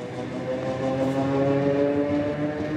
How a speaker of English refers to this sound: The women board a train headed to the Donetsk region, where the war's fiercest fighting is going on. The train is filled with the partners of soldiers fighting there.